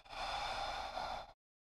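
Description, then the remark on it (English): A single long breath during a yoga session, a big inhale through the nose and exhale through the mouth, a steady airy rush lasting just over a second before cutting off into silence. No one speaks. “And then together we'll take a big inhale through the nose. Exhale through the mouth.”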